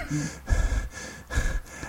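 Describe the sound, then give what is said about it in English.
Someone imitates the heavy, open-mouthed breathing of mouth-breathing hicks in a TV commercial for the farmersonly.com dating website: two loud, raspy breaths, each drawn in and pushed out in a slow, labored rhythm, with no talking. “And it was this commercial comes on, and there's these, like, you know, mouth breathing hicks, and they're going.”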